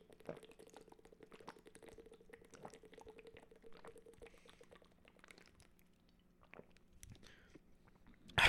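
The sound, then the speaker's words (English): Someone drinks a whole water bottle, with quiet gulps and soft plastic crinkles repeating over a steady low hum, ending in a louder clatter. Nobody speaks. “Let me get a drink of water real quick.”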